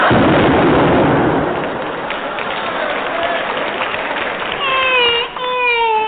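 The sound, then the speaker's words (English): A loud cannon blast bursts out at the start and fades into a long rumbling roar, followed near the end by a few high, wavering whistle-like tones. “He's opened fire. Duck! Why? There's a cannonball coming.”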